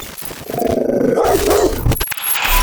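A dog barks loudly, one drawn-out, throaty bark followed by a couple of sharp, short sounds. No one speaks.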